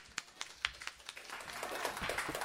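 A few scattered claps quickly swell into a steady round of applause from a small audience, soft and slightly distant, with no talking over it.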